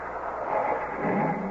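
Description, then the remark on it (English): A car's wheels spin in loose sand, a steady whirring grind under the engine, its pitch climbing as the revs rise toward the end. The car is stuck in the sand with a rope tied onto it. “The wheels, they're just spin in this sand.”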